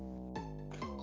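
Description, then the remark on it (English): A robot's electronic voice from the film Deadly Friend: a buzzy, harmonic-rich synthetic tone lasting about a second, bending sharply in pitch twice in quick succession, with no one talking over it. “That's what the robot sounds like.”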